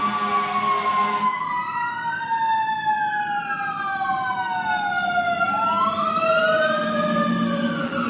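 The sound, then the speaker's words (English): A fire engine siren wails loudly outside, its pitch sweeping up and down in overlapping tones over a low engine rumble, sustained throughout as the truck goes by. “One more siren, folks.”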